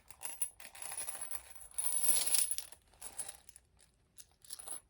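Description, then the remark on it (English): Copper coins clink and jingle against each other in a busy shuffle, with a louder burst of rattling near the middle and scattered lighter clinks after. “You gotta see the coins inside because they're cool looking.”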